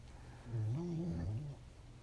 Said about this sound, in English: Sorry, my dog is making noise. Wait. That was a little Nemo. I don't know why she's making that noise, but she always makes that noise. It's her way of vocalizing.